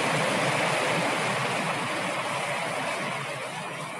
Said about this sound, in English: This one is like rolling thunder, rolling rivers. So you feel how this one is deeper than the other one? Mm-hmm. Brown noise.